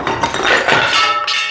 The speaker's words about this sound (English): You guys okay? Yeah, back up a bit. Around here, out of the dust. So, part of the wall or roof collapsed.